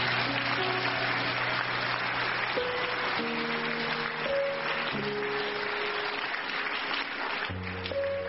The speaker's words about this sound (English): Clap for Job. Salva de palmas para Job.